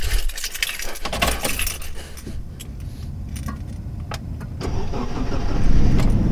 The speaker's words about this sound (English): Finally, one Saturday afternoon, he hopped in the car and started driving.